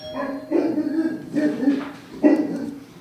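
A dog barks excitedly after someone rings the doorbell, a rapid string of loud yips and barks, with a few sharper bursts standing out over the steady noise.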